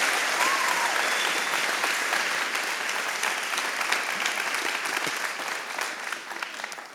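An audience applauds a man for sharing his story, a dense wash of many hands clapping at an even level that tapers slightly toward the end, with no voices standing out.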